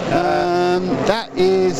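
A GTE-class race car driven by an all-female crew drones loudly with a steady, high-pitched engine whine, briefly dips and sweeps in pitch as it goes past, then roars on again at full speed.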